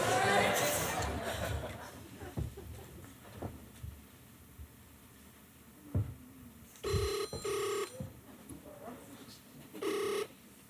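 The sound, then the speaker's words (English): Handling noise and faint background sounds, then a phone rings out on an outgoing call, with two short electronic ring bursts back to back and another a moment later, fairly loud. “Wait, I've got another phone call I've got to make.”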